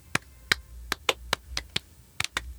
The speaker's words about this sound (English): Although I appreciate the applause for me.